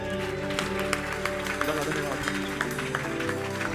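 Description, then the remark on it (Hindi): An audience claps together in scattered, uneven bursts over steady sustained musical tones, with voices mingling underneath the applause. “क्या आप उनकी ताली बजा सकते हैं?”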